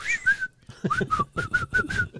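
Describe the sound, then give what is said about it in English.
A person whistles a short, bouncy tune, a quick series of clear pitched notes in a steady rhythm, with a few notes sliding between pitches. “You know, can't do the whistle part?”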